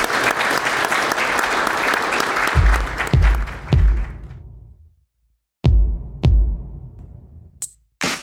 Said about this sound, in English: That's going to be it for this session. With your applause, will you please thank our panelists today?